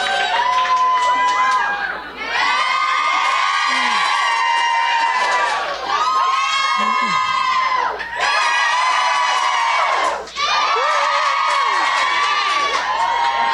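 audience cheering

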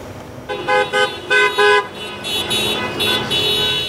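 car horns honking

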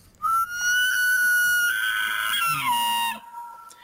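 elk call

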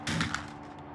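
hail of gunfire

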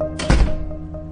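door being shut

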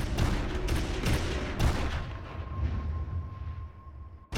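burst of gunfire

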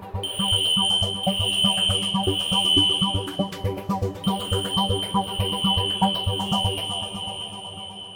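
fire alarm going off

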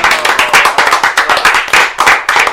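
clapping

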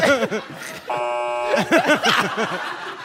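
buzzer sound effect

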